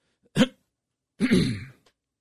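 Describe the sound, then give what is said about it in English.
A short sharp cough followed a moment later by a longer, rougher throat clearing, both fairly loud with silence around them and no talking. “Pardon me. I was trying to hit the button there, the cough button.”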